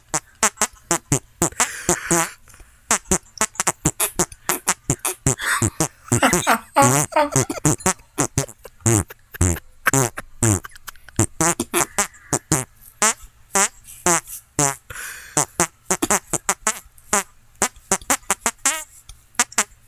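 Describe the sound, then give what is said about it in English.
A long, rapid series of squelchy hand farts, fairly loud, with short pops and drawn-out wet flutters following one another almost continuously for about twenty seconds, made on a warm, sweaty night. “All right, and warm night for something makes for good hand farts.”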